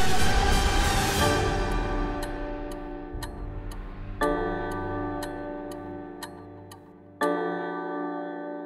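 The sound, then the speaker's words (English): An old-style grandfather clock ticks steadily at a brisk, even pace, clear, while two resonant chime strikes ring out and slowly decay over the ticking. No one speaks. “Now, I'm told that we're going to have an old-school grandfather clock.”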